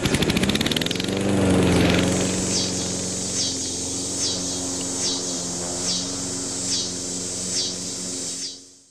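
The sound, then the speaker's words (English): A loud, continuous buzzing cicada song fills the air, pulsing in steady rhythmic surges about once a second over a lower droning hum, then cutting off abruptly at the end. “Cicada songs have measured in at over 90 decibels, which is louder than a lawnmower.”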